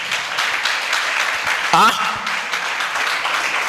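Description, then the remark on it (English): An audience at a service claps steadily and loudly throughout, a dense crackle of many hands, with a brief rising voice cry cutting through near the middle. “The way you are clapping, I don't think I have to continue the service.”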